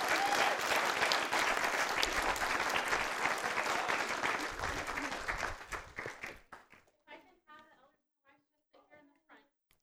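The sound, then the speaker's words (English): A church audience claps in a dense, steady burst of applause that goes on for several seconds, then stops abruptly as a lone voice starts talking. “I don't know what to do right here. Clap, maybe?”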